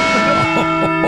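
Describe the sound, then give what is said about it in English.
A Liberty Bell sound effect on the Armstrong and Getty Show: a heavy bell rings out in a loud, sustained tone, rich with layered metallic overtones and a faint throbbing pulse, holding steady for about a second with no voices. “Again, the slapstick patriotism of Marshall, Squawky, and the Liberty Bell.”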